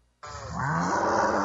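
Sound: cows mooing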